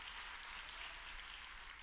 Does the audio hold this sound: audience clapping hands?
yes